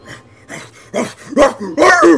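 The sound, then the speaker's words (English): A voice imitates a dog barking: a series of about five gruff barks that grow steadily louder, ending in the loudest, most snarling bursts. “As the death dog comes bounding up the spiral staircase.”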